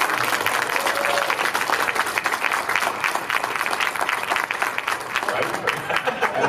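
A crowd gives a round of applause for a person, clapping steadily for several seconds, dense overlapping claps forming a loud, even wash of sound with no break in the rhythm.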